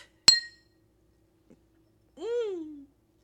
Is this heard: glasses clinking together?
yes